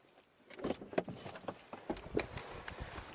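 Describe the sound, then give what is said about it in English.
A car door opens with a quick series of mechanical clicks and soft thumps from the latch and hinge, with faint rustling in between and no voices, as a person gets out of the car after taking the keys out of the ignition. “And let's open the door.”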